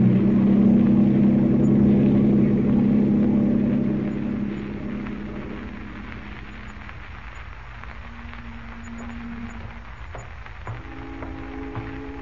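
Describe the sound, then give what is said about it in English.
A boat engine roars loudly with a deep, rough rumble for a few seconds, then eases down to a quieter, steady idle, with faint droning tones near the end. No one speaks. “Now, start her up. Give her the gun”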